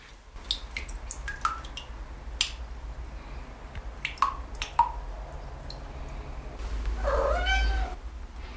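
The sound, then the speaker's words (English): Water drips from a wet rag into a saucepan in a shower, making about a dozen bright, ringing plinks at an irregular pace. Afterward, a cat meows briefly. “And I have a saucepan and a wet rag that I'm going to drip into the saucepan.”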